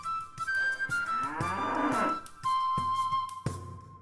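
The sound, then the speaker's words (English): Cattle of a pedigree dairy herd on a farm in the Scottish Borders mooing loudly, several long, drawn-out calls overlapping one another, some sliding in pitch as they rise and fall, with no talking. “and championship potential of his parents' pedigree dairy herd as they are.”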